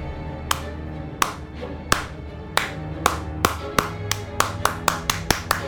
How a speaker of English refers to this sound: you see a man with shaggy hair and a beard, and he looks at you, and he gets up, and he begins clapping.